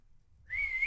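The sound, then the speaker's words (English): A dog gives a single high-pitched whine that starts midway and holds a steady, thin tone until the end, over a faint low rumble with no one talking. “We got a dog situation. He's trying to chime in on his least favorite movie, which is all human ones that aren't involving animals.”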